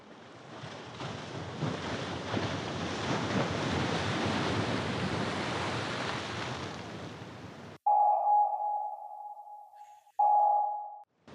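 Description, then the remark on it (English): A submarine dives beneath the gentle waves of Lake Michigan: a churning rush of water and surf swells for several seconds, then cuts off, followed by two loud, ringing sonar pings spaced a couple of seconds apart. “And before our stunned heroes could act, the submarine disappeared beneath the gentle waves of Lake Michigan, which is a completely scientifically accurate thing to have happen.”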